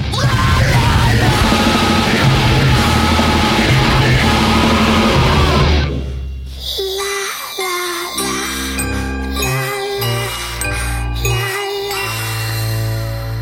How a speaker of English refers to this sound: And the way he goes from that la la la to one of his nastiest screams that he does on any of his albums.